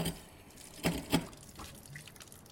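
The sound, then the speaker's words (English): A bathroom faucet runs quietly, its water making a soft, steady hiss broken by two brief, louder splashes near the middle as someone splashes water on their face, with no voices present. “I went into the bathroom and turned on the faucet.”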